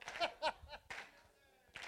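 A church audience claps in a few loose, uneven bursts, fairly quiet, with a brief pause before one last burst, clapping along to a chorus of Psalm 100, verse 2; a few faint voices or laughs mix in.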